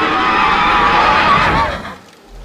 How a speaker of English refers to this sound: Its mouth open wide, in a shriek. Its eyes non-existent, the pits of flesh just staring into you. And it does scream a sound of alarm.